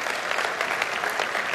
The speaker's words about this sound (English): That's two applause for a financial announcement, brother.